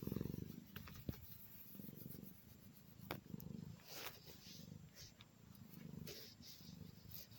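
A domestic cat purrs, a low, steady rumble that swells and eases in a rhythmic in-and-out pattern, with a few faint clicks and no talking.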